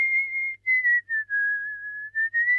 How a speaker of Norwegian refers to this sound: Det jo gøy å plystre også, da.